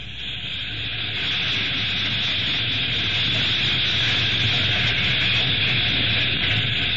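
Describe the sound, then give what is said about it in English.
A freight train with boxcars and a headlight rolls slowly along the tracks, a steady, loud rumble and hissing roar that holds constant throughout without voices. “Never mind the door. Here comes the freight.”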